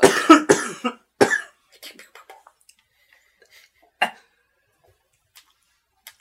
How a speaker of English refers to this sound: It's like not even like your sick cough. It's like, get out of me. Get out of me. Cough. Ouch.